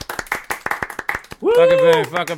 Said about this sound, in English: If you're listening, give us a round of applause on the sound effects, dickhead. Oh, round of applause. Where is it? Round of applause.